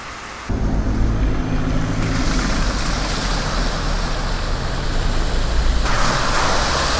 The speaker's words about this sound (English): The sound of cars going through the ford on the River Sid.